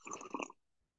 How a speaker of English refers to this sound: Sorry, podcast listeners. I'm just sipping my tea.